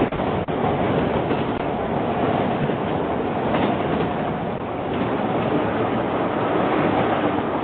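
A loud train rumbles steadily past, a dense continuous roar of wheels and rail noise filling the whole stretch with no voices.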